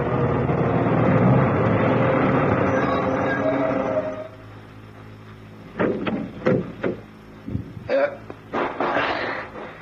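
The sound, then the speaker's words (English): A heavy 10-ton truck rumbles loudly as it pulls off the road to park near a house, then its engine drops away to a low hush, followed by a handful of sharp clunks and knocks. “Who'd want to steal a 10-ton truck?”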